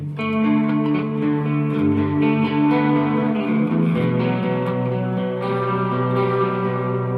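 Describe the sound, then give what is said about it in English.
Sustained electric guitar chords drenched in a shimmering, warbling chorus effect, ringing out loud, with a chord change about halfway through and no voices. “So now let's hear something like, let's look at a chorus sound. So the classic chorus sound.”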